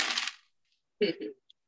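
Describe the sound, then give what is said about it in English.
A quick clatter of dice tumbling across a hard tabletop, loud, then fading out. After a short pause comes a brief voice-like sound and a tiny tick. “I didn't need more dice.”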